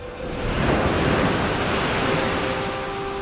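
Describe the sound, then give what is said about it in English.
Ocean waves surge and wash steadily in a broad, rushing roar, loud, with a faint steady tone humming underneath and no voices. “When he waved around the red silk ribbon, the ocean waved along.”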